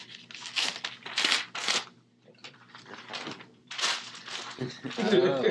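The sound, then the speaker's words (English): A blank sheet of paper is handled, rustling and crinkling in several short, crisp bursts separated by brief pauses, with a faint voice murmuring near the end. “Hand me a piece of paper.”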